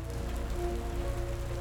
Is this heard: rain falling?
yes